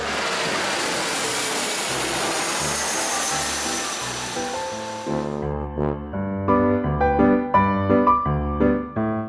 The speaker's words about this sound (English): Now we should insert the jet plane noise.